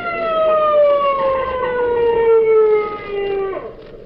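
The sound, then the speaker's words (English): A police motorcycle siren wails in one long, steady tone that slowly falls in pitch, loud and continuous, then drops off sharply near the end. No one speaks. “Ain't somebody coming. Motorcycle cop.”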